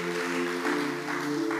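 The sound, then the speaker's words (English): An audience claps their hands in a steady, dense wash of applause, layered over a sustained, held musical chord that continues throughout. “You can clap your hands.”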